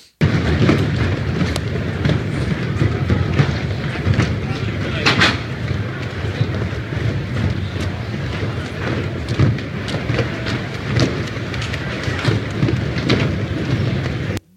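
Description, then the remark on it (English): Heavy rain pounds steadily on a tent during a storm, with a deep rumbling storm roar underneath and scattered sharper patters, loud throughout with no letup. “So here's just a few seconds, and I want you to take notice of the lights that are hanging from the top of this tent as this storm is going on.”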